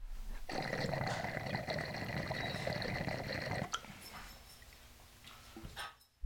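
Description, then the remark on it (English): A dog lets out a long, rumbling burp lasting about three seconds, loud, followed by quieter rustling and faint dripping noises. “This fucking dog is just burping over here.”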